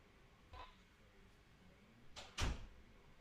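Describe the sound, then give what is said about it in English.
A door swings shut with a brief creak and a firm thud, preceded by a softer knock about two seconds earlier, with no talking. “Hey, close the door”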